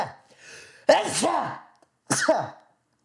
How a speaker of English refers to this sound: God, I'm starting to sneeze. Am I allergic to... Am I allergic?